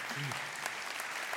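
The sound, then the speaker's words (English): Dense, steady applause from a church audience fills the whole moment, an even wash of many hands clapping at a moderate level, with a brief murmur of a voice at the start. “That is applause-worthy, by the way.”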